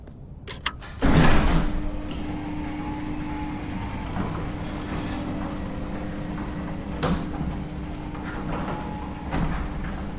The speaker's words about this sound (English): I waited for the bay door to fully open, then I hit the power switch.